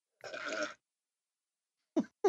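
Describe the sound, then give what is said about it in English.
A raspy, sputtering mouth noise imitating a fart lasts about half a second. After a pause come two brief, clipped vocal sounds, all moderately loud. “Sound like you farted through your mouth, beer.”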